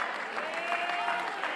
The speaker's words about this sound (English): Come on, clap your hands unto the Lord.